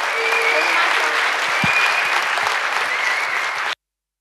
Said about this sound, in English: So please do me a favor and give a big round of applause for Sarah Harrison and Grace North.